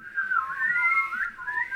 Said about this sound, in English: Boys, could you please do, could you all just whistle for me, please? Could you all just do a bit of whistling?